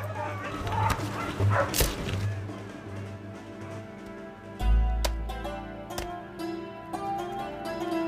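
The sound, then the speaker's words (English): Dogs bark and whimper in a tense, unsettled scene, with a few sharp, irregularly spaced barks standing out over a low, rumbling background. “The Chamberlain of the City of London made one payment for the killing of nearly 5,000 dogs.”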